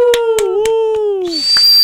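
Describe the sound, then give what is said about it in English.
A loud, piercing whistle holds a steady tone that slowly sags downward, punctuated by sharp rhythmic clicks, then gives way to a thin, high-pitched ring at the end. “Ear-piercing whistle.”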